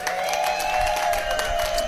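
An audience applauds in a steady, dense patter of clapping, with a sustained high-pitched tone ringing through underneath.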